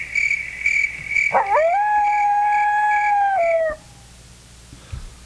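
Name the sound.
coyote howling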